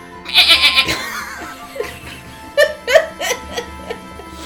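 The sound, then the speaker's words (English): A person imitates a goat with a burst of shaky, quavering bleats, then several shorter wavering bleat-like cries follow in a broken rhythm, fairly loud. “And now you're going to goat.”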